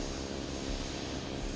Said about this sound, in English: You can hear a sound that sounds like a jet engine that's getting closer.